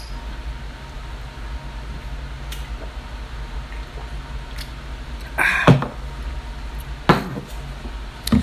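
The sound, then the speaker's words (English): Shot glasses clink together in a couple of sharp, bright taps as a toast before drinking shots, the loudest a short cluster midway and another a moment later, over a steady low background rumble with no talking. “We're going to pour some shots here and we're going to take the shot, and then that's officially when we're going to just get this thing going.”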